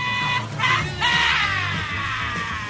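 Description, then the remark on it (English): A loud, raw and strained recorded scream, used to introduce hour two of the Dennis Prager Show, rising in a couple of bursts before stretching into one long, wavering howl that slowly trails off. No talking accompanies it. “Thank you, Mr. Scream, for that rousing introduction.”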